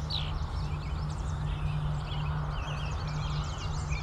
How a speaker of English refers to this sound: So you can hear some American robins, yellow warblers, just a couple Canada geese going overhead.